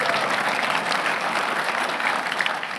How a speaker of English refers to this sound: So what he says is, you can clap if you want. If you like the way Jesus treats you, feel free to get excited about that.